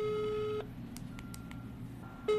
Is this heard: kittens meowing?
no